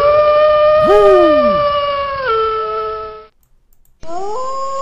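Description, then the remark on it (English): Several overlapping long, wavering howls rise and fall together in a loud chorus, cut off into a brief silence before another howl starts up again. “Man, we had dogs out there howling, or wolves out there, man.”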